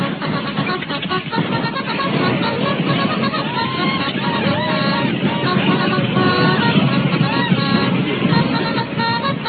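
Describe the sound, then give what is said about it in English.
A bugle sounds the call to mount, its brassy, horn-like notes running through a dense wash of loud, steady commotion, with voices mixed in throughout. “Bugler, sound the call to mount.”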